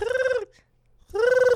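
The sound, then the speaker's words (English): An owl-like bird call given for Owls Lacrosse: two loud, sustained hooting calls, each with a rich harmonic tone that dips slightly at the end, separated by a brief silent gap. “I'm going to hit you with the bird call early, Owls Lacrosse.”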